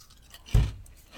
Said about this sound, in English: The chip is a really solid kettle chip. It's a good, nice crunch. Nice thickness, too. It's not too thin, not too thick.